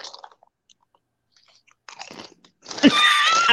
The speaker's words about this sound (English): if … could chew a little bit softer, I bet the audience could hear me